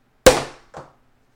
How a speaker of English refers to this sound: But if you hear a noise like a gunshot, it's just the champagne cork. Don't panic.